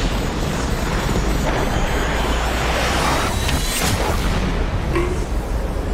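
A loud, steady jet roar fills the whole stretch, a dense rushing rumble that holds for several seconds as the aircraft passes, with no voices.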